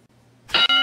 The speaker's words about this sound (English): Rumor is the Chief, get down here. I got a bell for you.